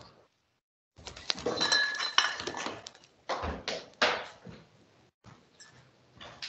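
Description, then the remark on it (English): Glass bottles clink and rattle against each other in a series of bright, irregular knocks and chimes, with a few louder bursts and short pauses between them, as a fresh bottle is fetched. “Wait, let me go get a fresh bottle.”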